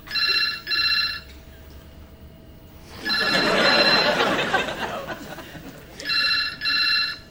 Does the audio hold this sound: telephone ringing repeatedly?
yes